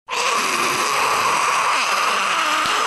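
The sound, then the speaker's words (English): A voice imitates a fire-breathing dragon with one loud, unbroken, breathy roar that rushes and hisses steadily for nearly three seconds before cutting off. “Give us your best dragon attempt. Of breathing fire.”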